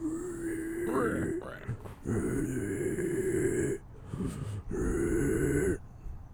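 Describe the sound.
A voice imitates a drunk man trying to breathe, sounding like a pig grunting, in several long, rough, throaty bursts. The bursts are loud and low-pitched, separated by short pauses, with no words spoken.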